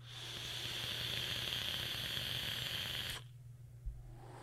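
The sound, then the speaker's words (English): A vape coil crackles and sizzles steadily through a hit of about three seconds, fairly loud, then cuts off abruptly, leaving a faint low hum. “That is straight up helicopter mouth crackle. That crackle is so deliciously good.”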